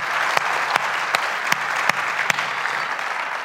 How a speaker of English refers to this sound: well, let's give our team a round of applause. You guys can go ahead and sit down. Great job.